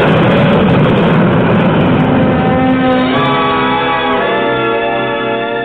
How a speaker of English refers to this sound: You're in one of Eastern's whisper jets. The noisiest section is the pilot's compartment. Yep. We keep the door closed. Flaps coming by. In the cabin, it's quiet. The jets and the noise are behind you.